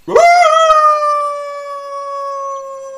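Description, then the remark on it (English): A single dog howl rises sharply and then holds a long, steady, mournful tone for about three seconds, loud, with no talking over it. “I didn't know you had a dog.”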